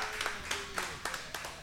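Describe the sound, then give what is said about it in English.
Sparse audience applause for a performer at the Moon Eye Music Hour music show, hosted at Cold Creek: a handful of irregular, sharp handclaps scattered over a second and a half, fairly quiet, with no voices over them. “Hey, y'all, give it up one more time for …, y'all.”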